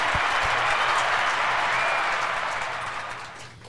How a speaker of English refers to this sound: And tonight, you get to hear their applause and the applause button.